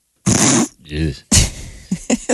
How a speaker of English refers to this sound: Oh, thanks, party. That was a belch.